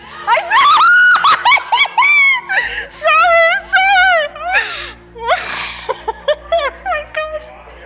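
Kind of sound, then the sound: human body sound, person screeching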